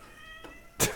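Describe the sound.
A single cat meow, a drawn-out tonal cry lasting most of a second, ending in a short, harsher burst of noise. Fairly quiet and heard on its own, with no talking.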